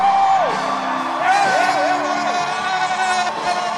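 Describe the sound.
A loud crowd shouts, whoops and screams together in a dense, sustained roar, with high voices rising and falling over the steady clamor throughout.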